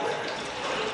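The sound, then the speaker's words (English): Hail pours down outside in a dense, steady roar of rapid patter, a loud, unbroken hiss like rushing water with no voices over it. “Oh, that's hail.”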